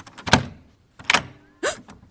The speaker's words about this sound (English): That's the door upstairs. He's coming in. He's in the house, guys.